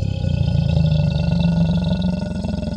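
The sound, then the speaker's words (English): A deep, rumbling alligator roar, loud, holds steady for nearly three seconds as one continuous guttural growl with a faint pulsing texture, and no one talks over it. “Oh, wow, I forgot about you, alligator. Good, I'm glad you're on board.”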